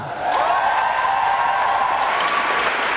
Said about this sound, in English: Please put your hearts together and applaud all the 22 young poets up onto this microphone tonight, as well as all the librarians and all the schools around this Portland city.